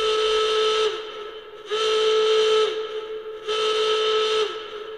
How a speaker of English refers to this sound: Oh, vomiting kittens, that's the fire drill. Everyone, please leave the building single file. Walk, do not run.